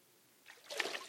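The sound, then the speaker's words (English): A short burst of water trickling and splashing rises out of near silence, growing a bit louder for about half a second, fairly quiet, with no voices. “Did you hear that? Love that sound, water.”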